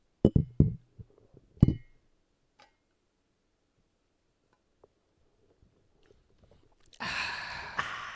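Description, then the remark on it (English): Metal shot glasses of whiskey clink against a microphone in a toast: a few sharp, thumpy taps, one with a brief bright ring. A long quiet stretch follows, then a loud burst of rough hissing noise at the end. “Why did yours sound metal? That's a cool metal shot glass you have.”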